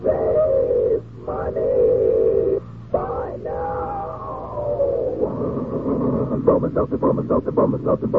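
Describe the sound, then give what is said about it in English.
A steam train sound effect in a radio advertisement for Bromo Seltzer: drawn-out, hooting whistle tones broken by short gaps, then a rising rhythmic chugging that grows faster and louder. No one speaks over it. “You can take it straight from our educated Bromo Seltzer train, friends.”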